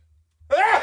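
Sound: sneeze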